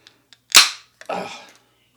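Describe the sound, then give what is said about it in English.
A beer can, canned on 11/9/22 and about three weeks old, is cracked open to be poured into a glass: two faint clicks on the tab, then a sharp, loud pop with a bright hiss of escaping gas, followed by a shorter burst of fizzing. No one speaks. “Canned 11/9/22, so not even a month old.”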